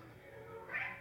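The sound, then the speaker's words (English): A cat lets out a single drawn-out, agitated meow that rises and strains near the end, heard at moderate volume over a low background hum with no talking. “My cat's freaking, bro. Cat's freaking out.”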